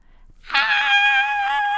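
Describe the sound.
A woman lets out a sudden, loud, high-pitched scream of pain as a mousetrap springs onto her big toe, sustained for over a second after a brief quiet moment, as a single piercing cry with no other voices.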